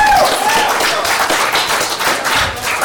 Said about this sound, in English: Well said, well said. Okay, now. Round of applause.